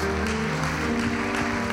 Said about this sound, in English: Come on, would you give Him a hand clap of praise right now?